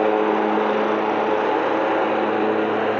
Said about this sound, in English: It's super loud. Yeah, that's really loud. That tractor there.